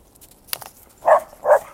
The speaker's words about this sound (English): Hey. What are you barking at? Come, come. No. None of that. But again, I understand you're a dog. This is what you do. You bark, bark. Makes you feel good.